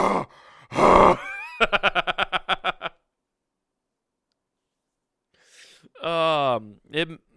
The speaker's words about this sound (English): Okay, you got to breathe. My phone's older, so you got to breathe a little harder when it's on longer.